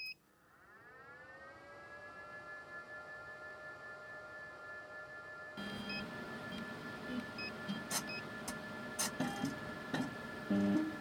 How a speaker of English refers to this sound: Here we pump our litre of river water through a fine filter. The size of the pores of the filter are so small, they trap cells from all the creatures living in the river.